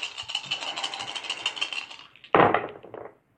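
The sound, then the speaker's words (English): Dice, with the red die being rolled again, rattle steadily for about two seconds in quick, clicking pulses, then spill out with one louder clatter that tumbles briefly and dies away. No one speaks. “So I need to roll the red one twice.”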